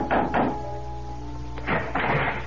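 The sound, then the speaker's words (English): Knocking at dusk on the wooden door of the Adams house: two heavy, dull knocks, a pause, then another pair of thuds, fairly loud over a low steady hum, with no voices. “It took me 2 full days and a night to retrace my way along the roads, and the coach had brought me, and dusk was beginning to fall when, exhausted, famished, and dirty from the road, I knocked on the door of the Adams house.”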